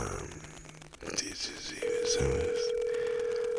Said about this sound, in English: Is she gonna pick up the phone? Or is she going to just ignore me? Maybe her phone's downstairs.